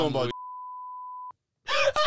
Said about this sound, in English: Yo, I gotta beep so many names.